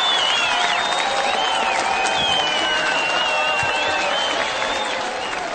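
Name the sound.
applause sound effect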